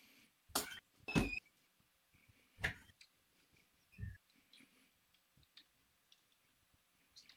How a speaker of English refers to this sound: I'm not typing. I'm drinking, so that's not typing, I promise.